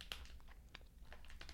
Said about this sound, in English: That's how I remember gummy bears. Resistance when you chew them. Your teeth don't just sink into them like mud. You're chewing.